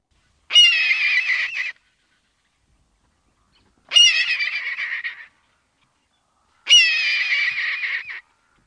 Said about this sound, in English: That awesome sound is the scream of the adult red-tailed hawk. The call is usually made while the hawk is soaring, so whenever we hear it, our eyes go upward in hopes we will sight this great bird.